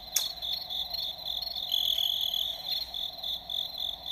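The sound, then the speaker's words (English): A cricket sound effect: crickets chirp in a steady, high-pitched trill that carries on for several seconds at a moderate, even level, with a few faint clicks and no voices. “That should have been crickets.”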